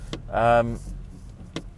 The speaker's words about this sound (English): I'm now in a queue of traffic. That classic Monday morning feel. So if nothing else, this podcast is you're hearing me work through. Apologies, I'm now sat in your way, so I've got to move forward here to hopefully get out of his way. There we go.